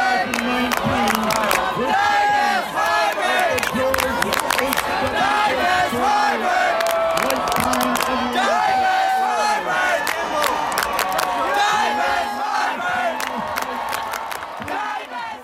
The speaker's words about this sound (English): And then the crowd began erupting into chants, screaming, "Divest Harvard!